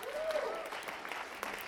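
A crowd applauds with dense, steady clapping at an even loudness throughout, with a brief whistle-like tone rising over it near the start.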